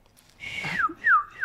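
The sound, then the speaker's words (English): A person whistles an impression of a seagull call: a breathy rising note followed by three sharp, descending whistled cries in quick succession, fairly loud. “let's hear a seagull impression.”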